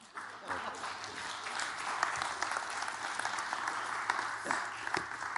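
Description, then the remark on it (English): An audience claps steadily for about five seconds, a dense crackle of many hands at an even, moderate loudness, with no speech on top. “If you knew how I did that, you wouldn't be clapping.”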